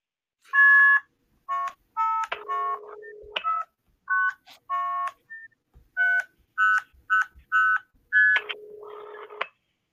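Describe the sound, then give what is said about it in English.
A rapid sequence of electronic telephone dialing tones from a blue box, steady paired beeps in quick bursts, mixed with a few longer low buzzing tones, played loud and clear with no talking. “What'd you guys dial?”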